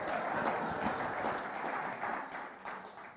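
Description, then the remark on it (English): A church audience claps steadily for a few seconds during a fourth Sunday of Advent service, a dense, even patter of many hands with no voices over it, holding fairly loud throughout before easing slightly at the end. “They're clapping”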